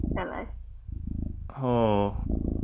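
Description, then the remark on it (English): A huge male cat purrs loudly, a steady rhythmic low rumble running throughout, broken by two short, tonal vocal sounds. “There's very loud purring.”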